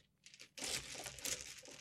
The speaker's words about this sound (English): And all my d4s always go missing. They all sink to the bottom of my dice bag. I'm just shoving my hand in until something stabs me.